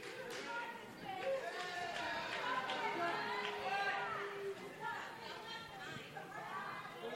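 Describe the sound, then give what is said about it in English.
A restless wrestling crowd waits for an announcement from Tasha Steelz while the tech crew tries to fix a problem. The air fills with dense, overlapping chatter and murmuring, a steady loud babble of many voices with occasional shouts rising above it. “And crowd's getting restless here.”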